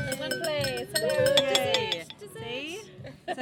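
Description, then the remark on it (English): Busy restaurant ambience at a group birthday dinner: overlapping conversation from several people with repeated bright clinks of glasses, cutlery and dishes sounding through the chatter. “We are actually out for dinner celebrating my birthday, and we're all together. Listen.”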